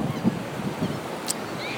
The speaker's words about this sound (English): The waves are crashing really. Man, they're really big right there. They're pumping.